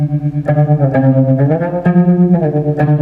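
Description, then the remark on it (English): Sustained electric guitar chords played through a PN2 tremolo pedal throb with a deep, steady tremolo, the volume pulsing rapidly and evenly while the notes shift a few times. Fairly loud, with no one talking. “Although that is a good sounding tremolo, that's...”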